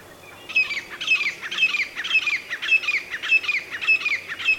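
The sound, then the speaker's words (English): A grey francolin, a bulky brown ground bird with a stubby tail, calls in a loud, harsh, rapidly repeated series of about nine strident notes, steady in rhythm, with no other voices. “this is the grey phalange. It has a stubbed tail, is a bulky looking ground bird and a very reluctant flyer.”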